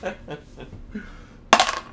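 Soft murmured talk gives way to a sudden, bright clatter of dice striking and tumbling across a hard tabletop, a quick burst of rattles that fades within half a second.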